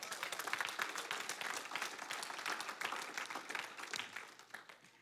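A church audience bursts into sustained applause for the Lord, many hands clapping densely and steadily for several seconds, loud throughout.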